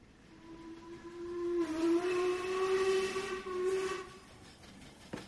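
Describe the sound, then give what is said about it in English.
A freight train whistle wails in one long, sustained blast lasting about four seconds, steady and fairly loud with a breathy hiss around it, then fades out. “Back in the days when freight trains were the lifeblood of the land, and the sound of wailing whistles blew, and coal was in high demand,”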